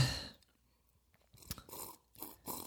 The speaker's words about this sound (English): Very well timed sip.